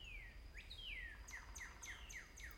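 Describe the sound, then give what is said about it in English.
A bird call played as an outro sound effect: a rapid series of descending whistled chirps, starting with a couple of longer slurred notes and then about six quick repeated downward sweeps, moderately loud over faint low background noise. “Yeah, it's time for the crazy bird to make its way.”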